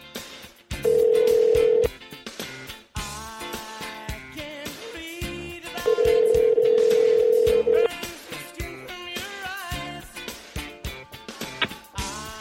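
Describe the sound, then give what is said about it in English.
A phone line rings out on the other end: two long, steady buzzing ring tones a few seconds apart, fairly loud, with music playing underneath throughout. “let's go to my man, the Notorious J.A.Y. Come on, phone. Here we go.”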